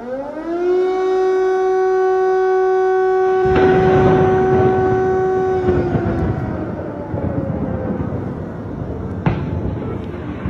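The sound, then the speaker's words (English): A civil defense air-raid siren wails with a steady, loud tone that holds and then slowly falls in pitch, with rumbling background noise and a brief clatter near the end. “It's hard to comprehend being shaken from sleep by missile attacks, explosions, sirens, fire”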